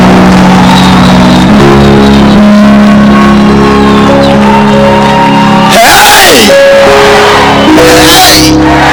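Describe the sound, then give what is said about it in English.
Loud, dense crowd noise of a church audience shouting and whooping praise to the Lord together, with rising and falling cries cutting through a sustained musical drone, continuous throughout. “Somebody give a shout to the Lord. Keep shouting, make it louder.”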